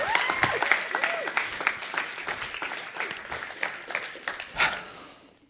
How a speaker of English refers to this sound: So we've got a great panel tonight. Why don't you give them a big round of applause